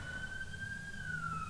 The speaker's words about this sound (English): Sorry about that. There is an ambulance riding past.